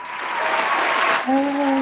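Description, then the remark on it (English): A steady wash of clapping from a crowd welcoming a guest fills most of the moment, loud and dense, then a voice cuts in near the end as the applause carries on. “If you will please gather a round of applause for Mr. Matt Burlingame of Chubbs Gone Wild.”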